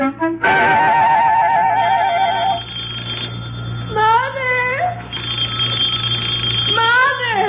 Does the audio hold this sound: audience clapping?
no